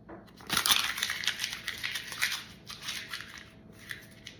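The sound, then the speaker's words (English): A $20 paper banknote being crumpled: a burst of dry, crackly crinkling that peaks early, then continues in softer, irregular rustles before fading. No one speaks. “Little crumpled up, but no worse for the wear.”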